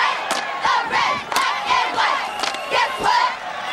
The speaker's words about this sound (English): And then you flip over to some funny stuff of football games where they have like the cheer off against the other cheerleaders.